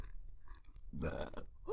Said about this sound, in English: I got to burp. That's so cool. I don't ever do that. This is beer, I'm telling you.